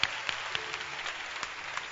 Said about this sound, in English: Clap your hands. I don't know why you are not clapping.